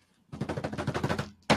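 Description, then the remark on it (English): A short drumroll of rapid, evenly spaced hits rattles along for about a second, then stops and gives way to a sudden loud crash. No voices are heard. “while … … has reportedly slept with drumroll please.”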